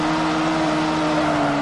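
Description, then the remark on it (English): A steady, droning car engine from a racing video game, during a one-lap qualifying round, holds one unbroken pitch at high revs, loud and constant with a buzzy hum, no voices over it. “One lap, so this is just a qualifying round. So just see how the game looks. But as you can see how fast it is.”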